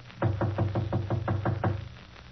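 A quick, even series of about eight or nine knocks on the partly open door of apartment 5D, Mr. Jenkins's, fairly loud, with a hollow wooden thud. The knocking then stops and only faint room noise remains.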